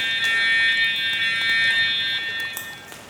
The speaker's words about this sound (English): I don't know this alarm. I've never heard it before.